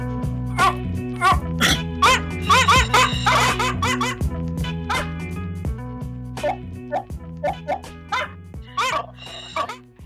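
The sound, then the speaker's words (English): Several dogs bark in quick, irregular bursts, sometimes overlapping, set against a steady low musical drone that holds throughout; the barking is loud. “Dogs barking.”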